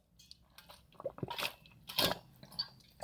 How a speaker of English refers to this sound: Let me take a drink of water and try that one again.